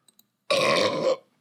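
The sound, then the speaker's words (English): A single loud, drawn-out burp lasting under a second, deep and rumbling with a raspy edge, with nothing else around it. “I can't wait to do a compilation of all the burps.”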